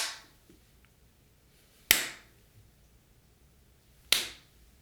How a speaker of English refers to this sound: I do have to clap real quick just so I can resync the video because I'll cut out that middle point. You don't have to clap. I will clap only.